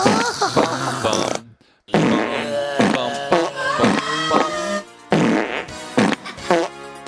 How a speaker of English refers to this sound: That's spooky. Same farts. So it's the same fart.